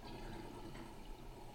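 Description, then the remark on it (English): A toilet flushing, with a steady rush of draining water that fills the whole short moment. It sounds fairly quiet and muffled, with no voices over it. “This thing literally moves gallons of water.”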